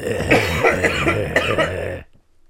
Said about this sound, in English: Hold on, I'm going to cough. Okay.